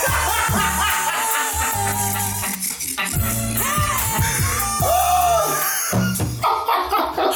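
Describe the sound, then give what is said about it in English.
A woman screams over a loud, dense music track with heavy bass, her high drawn-out cries rising and falling through the mix for several seconds. “My girl was screaming on the track.”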